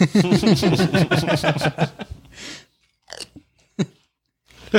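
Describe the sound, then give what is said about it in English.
Loud, rapid crunching of crispy chips being chewed, a dense run of sharp crackles for about two seconds, then a few isolated crunches after short pauses. “These are really crispy, chunky chips.”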